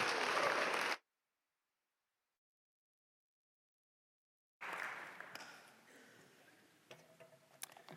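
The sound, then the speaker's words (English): An audience at a church's Word and Table service applauds a pastor introduced to speak that morning: a dense wash of clapping cuts off abruptly, silence follows for a few seconds, then the applause returns, gradually thinning to scattered individual claps. “So please give a big round of applause for Dr. Gerard Tashjian as he speaks for us this morning.”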